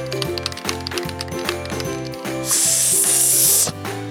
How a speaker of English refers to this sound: Dad, that sounds like spray paint.